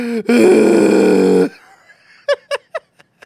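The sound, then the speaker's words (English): Exaggerated heavy tactical breathing, performed by a person: a long, loud, groaning voiced exhale, then a quick run of short huffs that fade away. “It's tactical breathing! breathing tactically!”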